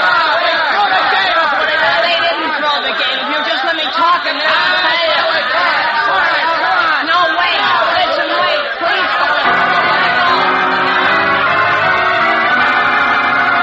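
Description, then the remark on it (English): An angry mob of hundreds of students in a gymnasium shouting wildly as it surges forward against a locked door, a dense, loud wall of overlapping yelling voices that stays steady and unbroken throughout, with no single speaker standing out. “Shouting wildly, the angry mob of students surges forward against the locked door, placing Jimmy Olsen and others who have gone down in danger of being trampled.”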